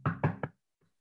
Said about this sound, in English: On this table. We've got the audio. They heard and felt a knock.